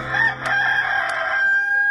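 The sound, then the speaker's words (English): A rooster crow made by a clam as a morning wake-up call, loud, one long drawn-out cock-a-doodle-doo that holds a strained, high tone before trailing off, with no other voices around it. “And I just never thought about it, but the rooster is the clam, so.”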